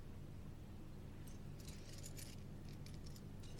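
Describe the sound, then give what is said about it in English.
Keys to the Fairchild building jingle in a quick run of light metallic clinks as they are handed over, loose and irregular, starting after a brief low hum and continuing to the end, quiet. “Though, whose keys is she giving?”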